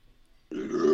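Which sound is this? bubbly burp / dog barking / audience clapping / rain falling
bubbly burp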